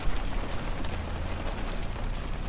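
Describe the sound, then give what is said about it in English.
Heavy rain drums steadily on a roof, a dense, crackling patter of countless drops with a low rumble underneath, holding an even loudness throughout with no voices. “That's rain on the roof, by the way.”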